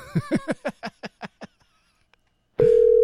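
A descending series of about eight short harmonic telephone beeps, each fading away, then a pause before a loud steady phone line tone cuts in and holds, as the call-in phone lines of The Shit Show are turned on.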